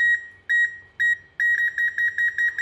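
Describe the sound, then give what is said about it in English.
A cup-level indicator beeps as milk is poured into a cup of hot water, a few spaced tones that quicken into a rapid string of short, bright beeps as the liquid nears the lip, loud with a faint low rumble underneath. “Now I'm going to grab the milk, and I'm going to pour the milk in until that beep goes rapid.”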